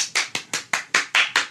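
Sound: applause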